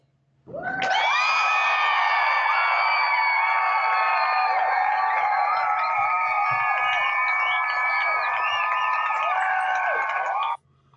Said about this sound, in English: Oh, extended applause tonight. Great. Thank you.